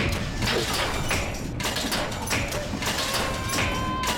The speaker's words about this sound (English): Honey, do you have your headphones on? Yeah. Good. I'm going to turn the dryer on.